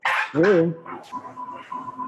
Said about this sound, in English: What is that? Was that a dog?